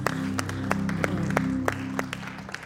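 A church audience claps hands together in praise at a Wednesday night service, in a steady, unison beat, sharp claps landing about three times a second over a sustained, droning musical backing.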